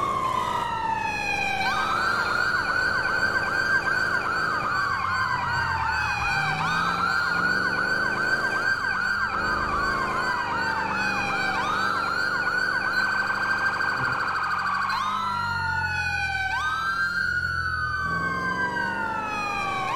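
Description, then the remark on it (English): A police car siren, on a pursuit responding code 3 to a fleeing suspect on Hopper Street, wails continuously, sweeping up and down in long rising and falling cycles, then switches to a faster, more urgent yelp near the end. Loud and steady throughout, with no voices. “Should be responding code 3 to fleeing suspect on Hopper Street.”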